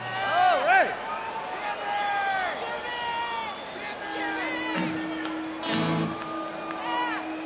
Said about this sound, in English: This song is another Alpine Valley favorite. The crowd rocked during this one. And I have a clip of the intro, which does have the foghorn conch shell in it.